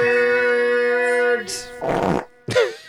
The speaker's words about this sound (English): I don't remember. I was going to say, I don't remember that fart being in there.